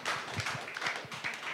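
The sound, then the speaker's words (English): An audience applauds with a dense, steady patter of many hands clapping at once, fairly quiet overall and growing softer, with no one speaking. “See, even the clap is getting softer.”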